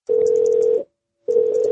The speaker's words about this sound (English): That's like the sick sounding ring. I mean, it sounds like it's like, oh! Like it's about to die or something.